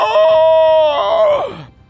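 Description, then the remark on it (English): A voice mimics the roar of two Nalar creatures: one loud, sustained, high-pitched growling cry held steady for over a second, then sliding downward in pitch before cutting off. “And you see they both roar.”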